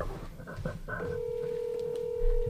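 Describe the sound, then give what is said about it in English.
A few quick phone keypad tones, then a steady electronic ringback tone droning for over a second as a call rings through unanswered, heard clearly over low background noise. “He's not gonna answer. We could try next from your phone.”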